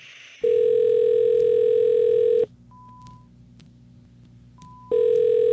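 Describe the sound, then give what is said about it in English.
A loud, steady telephone dial tone hums, cuts off, and a few short dialing beeps sound over faint line hiss before the tone returns, at the start of a demo of phone calls made using Morph Vox voice-changing software. No one speaks. “And so we'll give you a little demo, about a minute long, so you can fast forward through it if you want, of what we did with the phone calls from the dark side using Morph Vox.”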